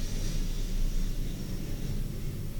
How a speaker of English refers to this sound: If y'all heard, did y'all hear that? That was like a commercial jet.